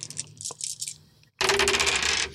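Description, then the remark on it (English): Three dice rattle in a hand with quick clicking shakes, then clatter loudly across a hard surface in a dense burst of rolling and tumbling, with no talking; they are rolled for a strength score. “let's roll your strength.”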